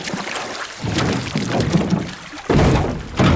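Loud water sloshing and splashing with heavy hollow thumps against a small boat hull as a scuba diver pulls themselves up out of the water and onto the boat.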